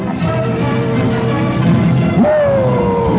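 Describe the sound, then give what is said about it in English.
Steady wind howls through the rigging of the ship Pequod, a dense rushing roar threaded with high whistling tones. Near the end, a louder whistle swoops up, then slowly slides down, with no voices. “That's the sound of the wind through the rigging.”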